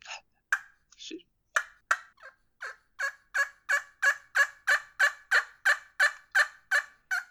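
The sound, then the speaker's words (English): A game call imitates a sleepy old turkey hen, like a tree call, with a run of about fifteen raspy yelps, starting soft and uneven, then settling into a steady, louder rhythm, with no talking. “Sleepy old hen right there. Yeah, it's just like a tree call.”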